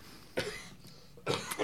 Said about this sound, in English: Important to note that the coughing is not part of the sound. That was just me.